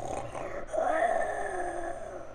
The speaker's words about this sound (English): All right, so you go towards the snoring, and it continues to snore and slumber. And you can kind of see through the shade that there's just, like, there's something quite large